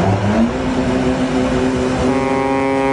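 Loud engine roar of racing boats revving, with a droning tone that shifts pitch and climbs higher near the end, steady and continuous with no voices.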